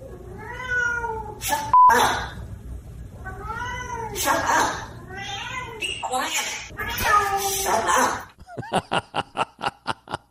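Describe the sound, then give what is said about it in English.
A cat meows repeatedly in long, wavering, drawn-out cries, fairly loud, with other voices mixed in, ending in a quick run of short, sharp rhythmic bursts. “And the cat's saying, you're in that cage telling me to shut up.”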